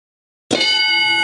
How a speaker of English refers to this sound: There it is. Have to wait for the bell every time.